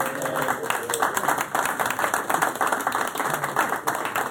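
A class audience applauds the teacher's wife with dense, overlapping clapping that holds steady for several seconds, a bright crackling wash of many hands at a fairly strong, even level.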